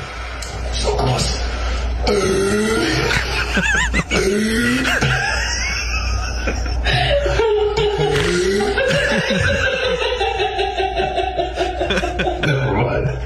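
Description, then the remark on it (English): Strained, croaking burps and gulping throat noises come in bursts over about thirteen seconds, loud, mixed with chuckling and laughter, as a person tries to drink a whole bottle of Sprite without burping. “It's a Sprite challenge where you're supposed to drink a whole bottle of Sprite and not burp.”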